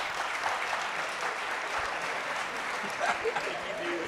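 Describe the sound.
Sustained audience applause, a dense, steady wash of many hands clapping at even loudness for about four seconds, with a few faint voices mixed underneath.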